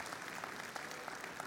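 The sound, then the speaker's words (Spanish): An audience applauds God steadily, many hands clapping in a dense, continuous patter with faint sharper claps poking through, sustained at an even level for the whole moment with no voices on top. “Le da un aplauso a Dios por eso.”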